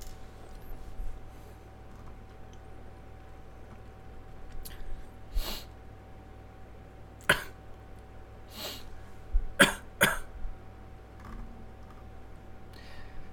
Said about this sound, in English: I was waiting for you to sniff again.